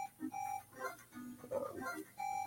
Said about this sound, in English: Once again, there's that alarm that Jason's in some cabin. I'm not worried about that right now.